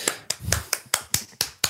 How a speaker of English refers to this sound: I'm clapping you.